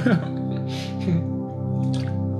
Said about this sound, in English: Let me drink the water here too. That's not water. That's yerba mate.